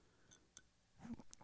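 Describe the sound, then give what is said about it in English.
A quiet sip from a drink: a few soft mouth clicks followed by a brief gulp near the end, with no talking. “I'm going to take a second for a sip.”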